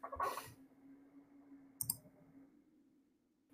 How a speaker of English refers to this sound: Sorry, you're going to hear some noisy typing here.